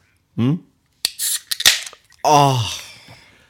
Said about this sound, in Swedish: Aj, som vad gör du? Mina öron. Vadå? Jag öppnade öl. Ja, det smällde.